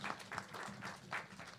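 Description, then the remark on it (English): An audience claps together in a steady, fairly loud burst of applause lasting the whole moment, the dense patter rising and falling slightly, with faint voices murmuring underneath. “Yeah, if you want to clap, please do.”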